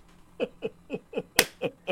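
A quick, steady run of about seven finger snaps, fairly crisp, one snapping noticeably louder than the rest, with no talking over them; the snapping is in appreciation of a haiku.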